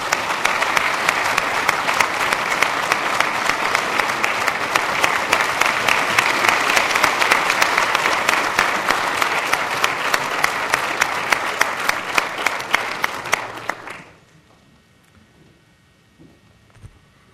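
A large audience applauds warmly, a dense, steady wash of clapping that holds for about fourteen seconds and then stops abruptly, leaving near silence with a faint stray sound.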